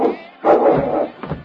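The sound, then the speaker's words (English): A dog barks behind a door, muffled, trying to get at a person on the other side: one long, rough, harmonic burst followed by a shorter, softer yap, fairly loud with no talking. “And that mutt almost tore it down trying to get at me.”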